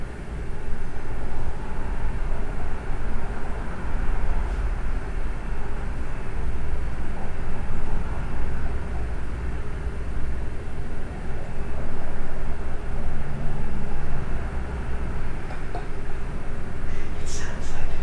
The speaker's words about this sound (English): I think that's a motor. What the fuck is it? It's the refrigerator, okay? Can we move the microphone closer to the refrigerator?